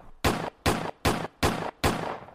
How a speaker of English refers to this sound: There's a lot of gunshots, cuz.